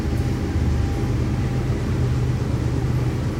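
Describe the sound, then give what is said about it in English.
A train rumbles past with a steady, heavy low roar that holds at an even, fairly loud level throughout, with no voices. “Train.”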